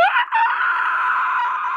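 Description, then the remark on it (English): A loud, shrill pterodactyl scream as it is hit by a flare, rising sharply, breaking for an instant, then holding as one long piercing screech until the end, with no voices. “There's a scream as that you look up and the sky lights and he hit one of the pterodactyls with it.”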